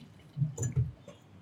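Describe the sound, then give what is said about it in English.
A beer, an XPA called the Dad XPA, being cracked open and poured a light straw-gold: a quick fizzy hiss and a few soft, wet glugs of liquid over about a second, fairly quiet, with no talking. “Better crack it open as well.”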